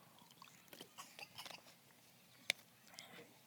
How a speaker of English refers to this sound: So let me take a little sip of water here.